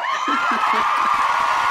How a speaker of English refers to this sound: And where's the round of applause?